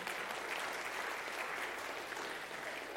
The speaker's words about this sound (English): Yes, you can clap. It's okay to do that.